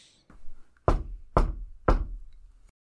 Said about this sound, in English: Rin stands at the door and Daisuke just knocks on the side.